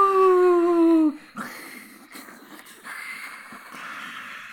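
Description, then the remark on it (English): Voices mimic a cheering crowd: a loud, drawn-out falling "woo" for about a second, followed by softer breathy, hissing whoops and murmurs that sustain. “Yeah, that's definitely a realistic crowd noise.”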